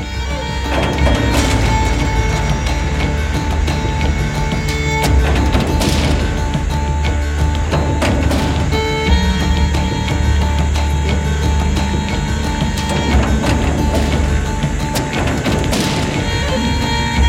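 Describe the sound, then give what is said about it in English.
Heavy, booming knocks on a wooden door land at irregular intervals, a handful of loud thuds rising over a dense, steady rumbling backdrop with no clear talk. “Wake Duncan with thy knocking.”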